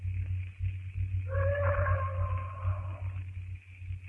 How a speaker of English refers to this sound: That bull ape is certainly doing a lot of boasting tonight. He sounds very close, John. Oh, he's miles away. Those bull apes have tremendous lung power. Beastly sound.